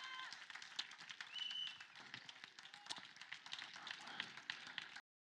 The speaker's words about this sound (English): Now give the Lord a big hand clap of praise.